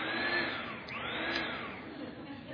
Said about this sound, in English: So if I had to put her down in her little swing, I would turn the vacuum on and vacuum.